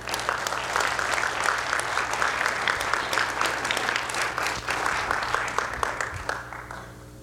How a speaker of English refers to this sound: So give her a round of applause as she comes, please.